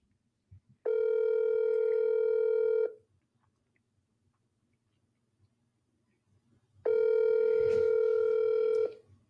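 A steady telephone tone sounds twice as a phone call is placed, each lasting about two seconds, with a quiet pause of several seconds between them and faint low rumble underneath.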